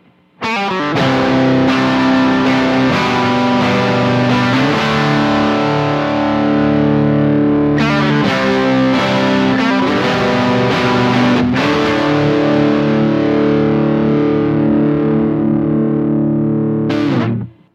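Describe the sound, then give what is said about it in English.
Heavily distorted electric guitar through a tube amp on its normal channel, no pedals, played as a doubled track; bright volume at 3 o'clock, treble and bass at noon, stack volume at 11 o'clock. Sustained power chords ring out with a few quick changes, loud, with no voices. “So that was just pure tube distortion.”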